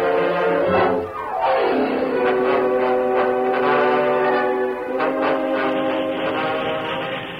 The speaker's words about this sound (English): Meanwhile, the freight train was nearing Sycamore Bend.